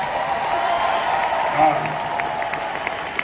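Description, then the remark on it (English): Steady audience applause at an Adam Sandler comedy show, given for a fan after the show was stopped for the fan's medical assistance: a dense wash of many hands clapping at an even level, with a brief crowd voice rising through it midway and scattered sharper claps toward the end. “Let's give a round of applause for that dude.”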